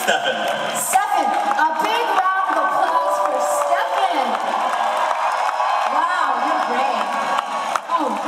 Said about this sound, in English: Ladies and gentlemen, a big round of applause for, what is your name, sir?